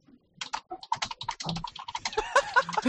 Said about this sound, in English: the typing is really loud. Especially when you're using your webcam's microphone.